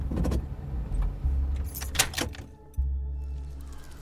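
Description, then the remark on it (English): A car's low engine rumble winds down as the vehicle slows and halts because its brakes feel loose from a broken line, with a few mechanical clicks and rattles before the engine settles back into a steady idle. No one speaks. “What are you doing? Why are we stopping? Something's wrong. Brakes feel loose.”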